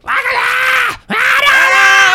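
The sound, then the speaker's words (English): A person imitates an anime character's shrill, strained scream in two long, loud bursts separated by a brief breath, the voice harsh and piercing. “All he does is scream.”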